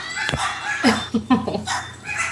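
Dogs bark in a quick run of short, sharp yelps, four or five in a row with an uneven rhythm, moderately loud against a steady background hum.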